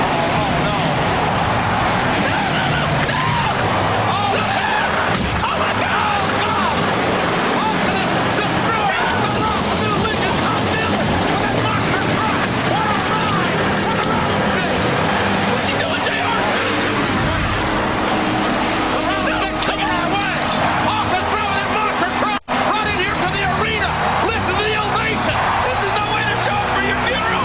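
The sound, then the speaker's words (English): The Rock's car is driven off as Stone Cold Steve Austin steals it at a WWF wrestling event, beneath a loud, continuous roar of crowd noise and babble, with the motor blending into the dense background rather than standing out clearly. “He is stealing The Rock's car!”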